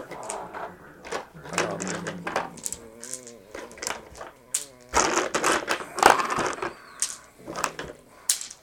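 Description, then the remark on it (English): Handfuls of dice rattle and clatter across a surface in several uneven bursts of sharp plastic clicks, fairly loud, with people's voices talking intermittently among the rolls. “Guess it's a good thing I bought 4 packs of dice.”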